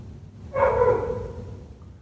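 A dog lets out one drawn-out, tonal bark that trails off over about a second, moderately loud above a low, steady background rumble.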